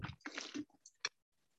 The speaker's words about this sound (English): Okay, so I am going to take a sip of water and then we'll start going. You get comfortable while I drink.